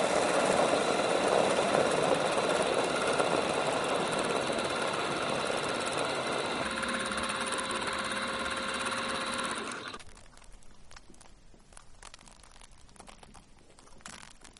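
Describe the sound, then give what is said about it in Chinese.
A laboratory stirring-rod mixer, resembling a household flour mixer, stirs a foam solution with a small amount of defoaming substance to measure foam breakdown. It runs with a steady, loud motorized whir, shifting to a more tonal hum partway through, then shuts off, leaving faint scattered clicks and rustling. “我们现在启动搅拌杆，就像家用面粉搅拌机那样开始搅拌，然后按下开始测量的按钮。”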